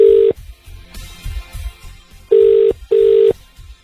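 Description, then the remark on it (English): An outgoing call to Clive Palmer's phone: a steady, mid-pitched electronic buzz sounding in a short burst, then a clear double ring of two loud pulses after a pause, with faint low rumbling between rings. “Should we ring Clive and see if he'll lend us his plane?”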